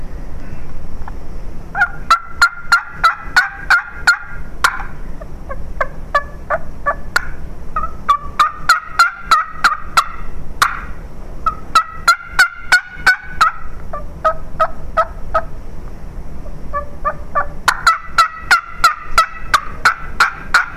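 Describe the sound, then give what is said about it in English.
A tube turkey call imitates several hens yelping back and forth in repeated bursts of sharp, clucking notes, some clearer and some raspier, louder and more aggressive, loud with no talking. “If I can sound like more than one hen, then that's a bonus.”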